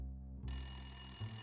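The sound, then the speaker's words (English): A man's phone starts ringing partway through, a steady electronic trill with bright high tones over a low background hum. It sounds fairly quiet, and no one speaks. “His phone's ringing.”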